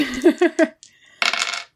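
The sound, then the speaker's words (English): Dice clatter onto a hard table: a few quick, bright bounces, a short pause, then a dense rattling tumble that settles after about half a second, landing on a four. No one speaks. “Wait, I'm not using those dice again. We already discussed that. All they roll is threes and twos.”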